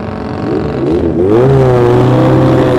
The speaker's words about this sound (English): You can just hear the revs on Mick's bike there. There he is. Away they go.